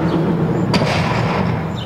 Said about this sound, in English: We're outside and someone just slammed a door for me.